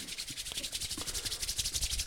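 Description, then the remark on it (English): Hands rub briskly together to warm them before a game of rock, paper, scissors, in a quick, steady back-and-forth rhythm, making a soft, hissy swishing friction sound that continues unbroken for about two seconds with no talking. “Getting the hands warm.”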